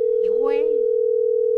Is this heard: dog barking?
no